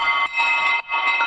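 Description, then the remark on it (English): Bright, glassy synth ice bell tones, played without the filter, ring out in three quick overlapping notes, shimmering and fairly loud, with no voices present. “So I have these ice bells.”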